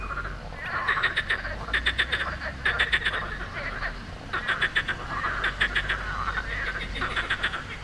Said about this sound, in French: I was hoping we would hear that. Ce qu'on entend, ce sont les grenouilles de Sospel, the morning chorus of frogs chirping on the river Bévéra.